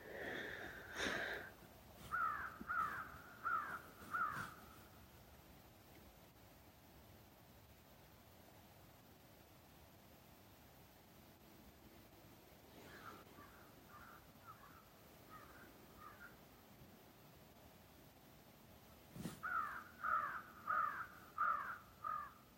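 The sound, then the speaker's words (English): Crows caw outdoors in short rhythmic bursts of four or five harsh calls, a loud series near the start, a fainter one midway, and another loud run at the end, over a soft hiss. “The birds have so much to say, and my heart is still.”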